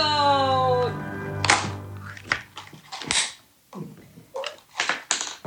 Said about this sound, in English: And then over lunch we had some Christmas crackers.